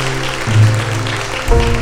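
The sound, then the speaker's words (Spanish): An audience applauds for God and their pastor in a steady, dense wash of clapping, with sustained low keyboard chords holding underneath and shifting once near the end. No one speaks. “Un aplauso enorme para nuestro Dios y para nuestro pastor”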